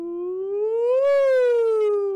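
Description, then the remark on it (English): A single sung falsetto siren, done as an exercise to strengthen and stretch the falsetto range: one clear voice glides smoothly upward to a peak, then slides back down, steady, with no other talking. “Simple one is just doing little sirens.”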